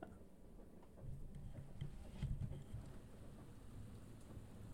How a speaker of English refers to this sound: What is that? Thunder. Oh no, that was the garage door closing. Oh. Dang. I was like kind of like wow, that's really loud. I'm like, wait, that does sound like thunder, but I don't know.